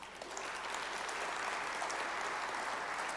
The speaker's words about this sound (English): I also am grateful to the contribution of every member of our port community. All of you, you should give yourselves a round of applause.